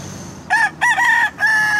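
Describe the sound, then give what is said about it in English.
A rooster crows once in Overtown, where roosters run around on the sidewalks: a loud, strained cock-a-doodle-doo broken into several rising and held notes, over a faint background hum with no voices. “Yes, that was a rooster.”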